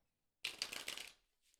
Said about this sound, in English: All right, so just take a moment and connect to the cards by listening into the sound of them being shuffled.